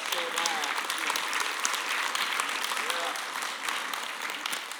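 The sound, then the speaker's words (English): A crowd, called on to clap their hands, claps steadily for several seconds, a dense, even roar of many hands with no letup, and faint voices calling out beneath the applause. “Clap your hands.”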